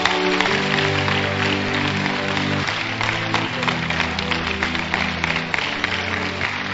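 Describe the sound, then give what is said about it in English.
A church audience claps for Jesus after a prayer, steadily and densely for several seconds, a crisp, sustained wash of many hands, while sustained keyboard or organ chords hold underneath at an even, fairly loud level. “Clap for Jesus.”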